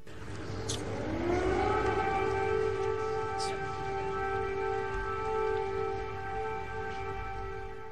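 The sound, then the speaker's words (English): An air raid siren in Ukraine, of the kind sounded when a Russian bomber is about to bomb the capital, winds up from a low pitch into a steady, loud wail that holds for several seconds, with a faint low rumble of background noise underneath. “These are the sirens that go off when there's a bomber from Russia that's about to bomb the capital, right?”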